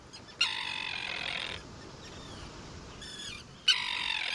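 Harsh, grating tern calls ring out in loud bursts at a breeding colony on a tiny island off the coast of Maine, one long rasping call followed by shorter ones, over a steady background of wind or surf with many birds calling.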